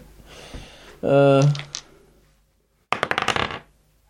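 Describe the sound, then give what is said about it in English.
A twenty-sided die is rolled, coming up sixteen, and clatters across a hard surface in a quick burst of sharp, rattling clicks lasting under a second. A brief voiced sound comes just before it. “Roll a D20.”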